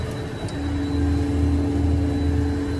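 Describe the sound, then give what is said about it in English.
Steady, loud droning hum of jet engines heard from inside the cabin of a private jet carrying Big Baby Davis, with a constant low roar and faint high whine throughout, no voices. “That, of course, is none other than Big Baby Davis on a private jet just a mere hours after being arrested for having 126 grams of marijuana and $92,000 in cold hard cash.”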